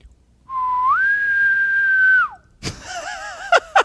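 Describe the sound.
A person imitates an elk bugle: a high, whistle-like note that slides up, holds steadily for almost two seconds, then falls away, followed by wavering throaty vocal sounds and two sharp bursts.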